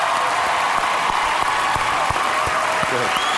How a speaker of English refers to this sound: Give this boy a round of applause.